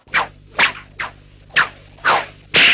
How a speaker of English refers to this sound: Black Snake, the whip.